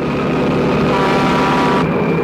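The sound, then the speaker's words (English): An 18-wheeler truck's air horn blares in one long, loud, continuous blast over the heavy roar of its diesel engine, with the horn's tone shifting slightly near the end. “where the main character spends most of the movie being chased by a menacing 18-wheeler truck, seemingly with no driver, and plowing its way through various spots in the desert.”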